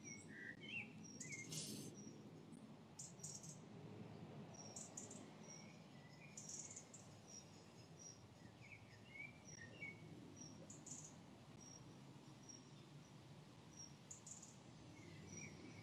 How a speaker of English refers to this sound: So let's take a moment. You can listen to the bird song.